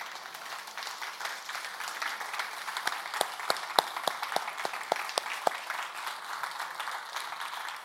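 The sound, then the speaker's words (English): A church audience applauds the youth who went on the summer mission trips, steadily for several seconds, a dense wash of many hands clapping, with a few sharper, louder claps standing out near the middle. “So if there are any youth in the house that went on either of those trips, would you like to stand up and we can all give you a round of applause and thanks?”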